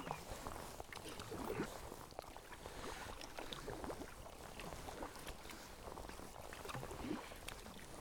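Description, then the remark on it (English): Kayak paddle strokes dip and swish through calm sea every couple of seconds, over a steady soft wash of sea and light breeze, on a cool, damp day with mist in the air and lowering clouds. “Lovely paddling conditions, though. Nice and cool, and the sea is beautifully calm.”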